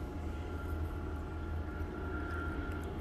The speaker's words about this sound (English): Yeah, there's the helicopter again. Very curious.